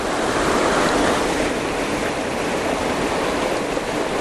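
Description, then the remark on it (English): A steady, dense roar of rushing water from a waterfall, constant and fairly loud throughout, with no breaks or voices, just an unbroken wash of white-noise-like spray. “You'll only see the very top of the waterfall, that's the problem.”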